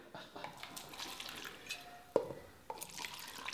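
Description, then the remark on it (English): Liquor trickles and drips into a shot glass, with a sharp glassy clink partway through and a softer knock after, all fairly quiet with no talking. “We gotta pour him a shot.”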